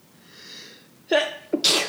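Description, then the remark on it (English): A person sneezes twice in quick succession, the first a sharp burst and the second a louder, breathier explosion, after a faint intake of breath. Loud, with no talking. “That explain why I'm sneezing so much.”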